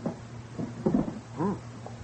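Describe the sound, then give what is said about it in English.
A wooden table drawer slides open, with a few short creaking squeaks and scraping rubs over about two seconds, against a low steady background hum. “Here, look, inside the drawer of this table”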